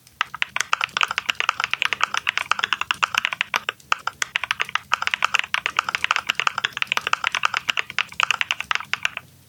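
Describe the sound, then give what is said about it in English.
Steady, rapid typing on a mechanical keyboard with cream switches, dense key clacks in an even rhythm lasting the whole stretch, with a brief pause near the middle and no voices. “Let's listen to the final one. This is the cream switches.”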